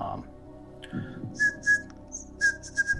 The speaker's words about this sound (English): Just try to keep the whistling to a minimum.